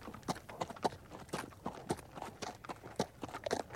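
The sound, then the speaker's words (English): Horse hooves clip-clop in a steady, slightly uneven rhythm, roughly a dozen sharp hoof strikes, like a horse walking along at a relaxed pace with no one talking. “The future president arrived at the Bells' property in the company of several men, horses, and a wagon.”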